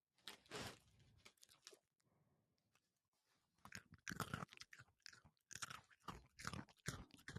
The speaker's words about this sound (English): You are such a loud eater. He's like, why are you putting this microphone in front of my face? I'm trying to eat.